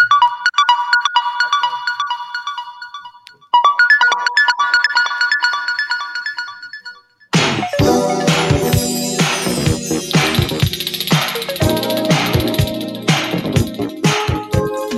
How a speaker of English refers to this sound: That sound like … on the keys.